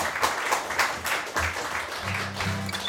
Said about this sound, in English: Maybe give him another clap just to cover me getting down.